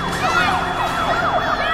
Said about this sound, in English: Why is the smoke alarm on? It's the fire alarm.